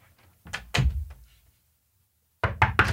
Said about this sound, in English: Okay. Tell me if this is a knock or not. Okay. Right?